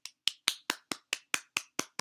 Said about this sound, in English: Clapping for consistency here. You know, I always gotta clap for consistency because y'all faves are not being consistent with their vlogmas.